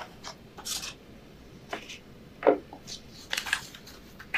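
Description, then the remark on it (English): Crisp rustling and crinkling of paper sheets being shuffled and flipped, in uneven bursts with short pauses, no voices. “This is the wrong piece of paper. Where is that?”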